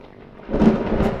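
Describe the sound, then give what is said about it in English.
A low roll of thunder from a storm brewing over an island swells up from a quiet start into a broad, rumbling peak that lingers, with a faint hiss like rain beneath it and no voices. “As he works, a storm brews and he laments Prospera's treatment of him.”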